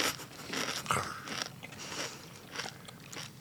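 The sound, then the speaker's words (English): Crunching into crispy fried chicken: a loud crackly bite followed by several shorter crunchy chews in an uneven rhythm, with no talking. “Got a really crispy bit here. Yeah, crunchy, a little bit spicy, but not overpowering, to be honest.”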